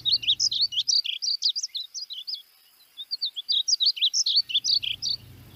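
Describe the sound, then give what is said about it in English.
A small, colorful songbird sings a rapid, melodious run of bright warbling notes, clear, pausing briefly midway before continuing, with a faint low rumble at the start and end. “And the song is very melodious. That's also my favorite bird song.”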